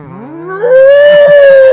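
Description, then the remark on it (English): A person vocally imitates an elephant slowly dying as the life is squeezed out of it, with a loud, rising, strained howl that climbs in pitch and then holds a long, wavering tone. “The sound of life being squeezed out. An elephant slowly dying.”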